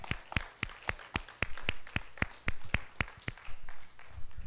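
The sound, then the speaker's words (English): An audience in an apostolic church claps together in a steady, brisk rhythm, about fifteen sharp claps in a row, before the beat loosens and fades into softer, scattered sounds. “It's all right to clap. Somebody started to.”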